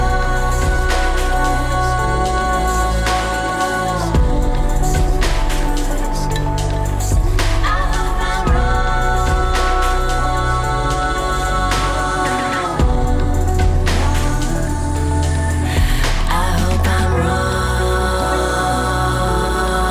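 A music track plays steadily for the whole stretch, loud and full-bodied, with layered instruments and a consistent rhythm, with no one talking over it.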